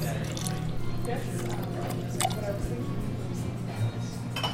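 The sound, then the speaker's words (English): Trickling pour of one ounce of Plymouth Slow Gin into a small metal measuring cup, a few seconds of steady liquid flow with a light clink, over a constant low hum of room noise. “And then the Plymouth Slow Gin. I'm going to use an ounce of this.”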